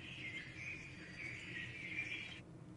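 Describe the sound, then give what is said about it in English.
A steady, high-pitched chorus of forest birds calling in a forest in Poland, with dense overlapping chirps and trills that run unbroken for a few seconds before cutting off, over a soft low ambient rumble. “Some forest in Poland. More birds. But they're different, at a different, like, frequency.”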